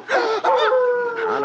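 A dog, the hound of the Baskervilles, howls in one long, drawn-out wail, its mid-pitched tone wavering and sliding slightly, loud and steady for over a second with no talking.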